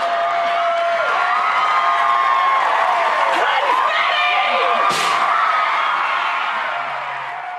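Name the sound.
studio audience cheering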